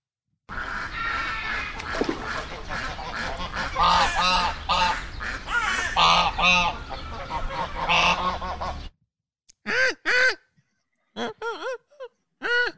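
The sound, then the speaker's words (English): A noisy flock of ducks quacks loudly over each other for several seconds, then the chorus cuts out and a few separate quacks follow. “And don't forget the quacker ducks.”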